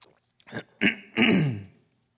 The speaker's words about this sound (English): Apparently, I am coughing a lot.